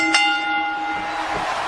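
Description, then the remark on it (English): A fight-starting bell for the Great Burger Battle clangs loudly, one bright metallic strike whose ringing tone hangs in the air and slowly fades, with no one speaking. “Ladies and gentlemen, it's the Great Burger Battle, so ring that bell.”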